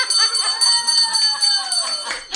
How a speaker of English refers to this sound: All right. Look at this. We'll ring the bell.